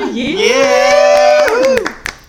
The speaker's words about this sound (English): Yeah, round of applause